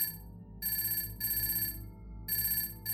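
A mobile phone ringtone goes off in bright, repeating electronic bursts, pulsing on and off about once a second over a steady low hum, moderately loud with no one talking.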